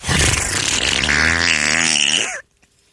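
A long, loud, raspy giant fart sound, standing in for a slammed door, blares for about two and a half seconds, its buzzing pitch wobbling up and down before it cuts off abruptly into silence.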